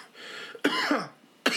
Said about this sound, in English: I actually have a cough that was real.